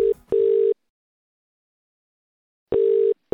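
A phone's ringback tone purrs through a handset: a steady electronic buzz in short bursts separated by a long silent pause, heard clearly with no one talking, after a brief click at the start.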